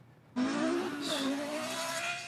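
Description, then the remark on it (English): A Lexus LFA's engine roars in suddenly with screeching tires as the driver loses control, overcorrects and skids, a loud, continuous squeal and rumble lasting about two seconds with no talking. “No, he lost control and then he overcorrected.”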